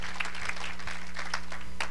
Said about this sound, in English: Can you give the Lord a hand clap of praise for that?